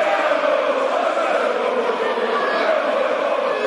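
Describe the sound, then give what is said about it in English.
A football crowd roars its approval of footballer Steve Morris's Cruyff-style swivel on the left-hand side, in a steady, continuous wash of massed voices, holding at an even loudness for the whole stretch without distinct cheers or breaks. “Hear the approval of the crowd.”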